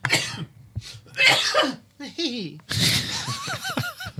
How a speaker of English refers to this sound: This is a leprechaun coughing at me.